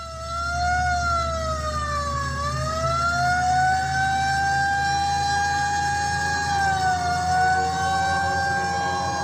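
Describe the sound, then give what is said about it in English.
Emergency sirens wail continuously at a dock complex, their pitch slowly dipping and rising over a low engine rumble. The sirens sound loud throughout, with no voices. “Sirens began to grow in volume, drawing nearer.”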